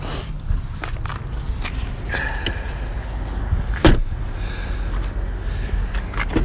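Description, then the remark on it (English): A car's rear door is worked open on a bright day: scattered handling clunks and rattles, then one sharp latch click midway, over a steady low outdoor rumble. No one speaks. “Straight open the back door, which will not be open.”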